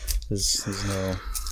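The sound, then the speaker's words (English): Green Santa Claus wrapping paper on a gift book crinkles and tears in quick bursts as it is opened, while a voice hums or murmurs briefly underneath without clear words. “It's pretty obviously a book, so let me go ahead and open it up.”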